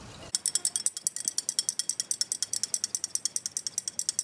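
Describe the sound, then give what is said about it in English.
Steady stirring of Epsom salts and pink food coloring into tap water in a container: a fast, even run of bright clinks and scrapes, several per second, continuing for a few seconds with no voices. “So stir that in.”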